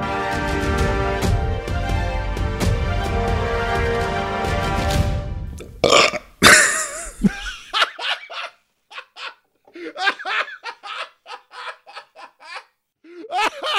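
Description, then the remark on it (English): A music jingle plays, then stops abruptly for one loud, gurgling wet burp. It is followed by a run of short, choppy vocal bursts that sound like laughter. “Oh, that was wet. That was wet. That came up.”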